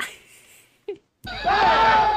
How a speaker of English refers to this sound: That's screaming. A good many dramatic situations begin with screaming.